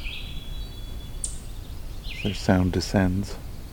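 A downy woodpecker's descending call: a quick run of sharp, whinnying notes that step down in pitch, fairly loud, following a thin high whistle near the start.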